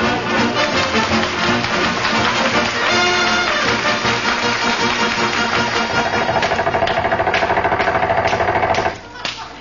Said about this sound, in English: we'll have to use air hammers and chop him loose